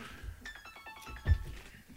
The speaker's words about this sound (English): When did you change your ringtone?